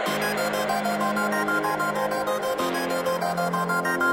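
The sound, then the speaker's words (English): A washed-out, reverb-heavy wall of sustained tones rings steadily at a constant level, with the held chord shifting lower partway through; no one speaks. “let me get a little bit of reverb.”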